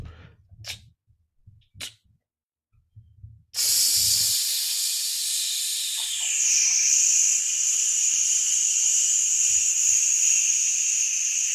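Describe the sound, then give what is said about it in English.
A loud, steady sizzling hiss sound effect starts abruptly after a few soft low thumps and continues unbroken for several seconds, bright, with a slight shift in tone midway. “Sizzling hot takes.”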